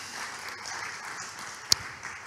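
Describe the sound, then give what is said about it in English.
Steady applause from a church audience for the worship team, a dense wash of many hands clapping at an even level, with one sharper, louder clap standing out near the end. “You can clap them if you want to.”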